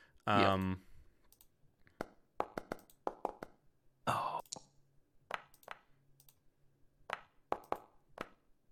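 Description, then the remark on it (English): Dice clatter and tumble across a hard table in several short bursts of sharp clicks, fairly loud, with two brief vocal exclamations breaking in. “Oh, it's the lucky dice again.”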